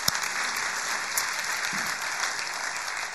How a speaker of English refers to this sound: It's a pretty amazing thing, isn't it? Isn't it? Feels like we should give the Lord a round of applause for something like that because it's...